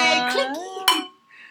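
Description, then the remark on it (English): Voices cheer, then champagne glasses clink once in a toast, a sharp bright tap followed by a short ringing tone that fades quickly, with a faint voice afterward. “I would like to do a cheers. A light toast to you ladies.”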